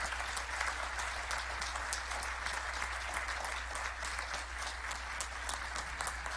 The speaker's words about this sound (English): Come on, let's give God praise. Can you all just stand on your feet and applaud them for their years of service to the St. Paul Church?